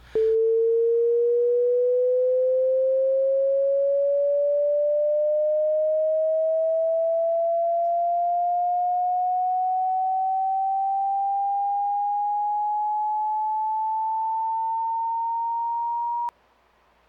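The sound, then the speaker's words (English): A long, steady censor beep added during editing to cover a remark: one pure electronic tone held for about sixteen seconds, its pitch creeping slowly upward the whole time before it cuts off abruptly. No voices. “So right now, the listeners are going to hear a long beep.”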